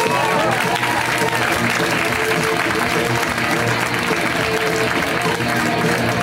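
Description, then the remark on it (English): A large live audience at a stand-up comedy show in LA applauds and cheers loudly as a comic is introduced, a dense, steady wash of clapping with mixed shouts and whoops that holds at full strength from start to finish. “Please give a warm welcome to Caleb Sinan, everybody!”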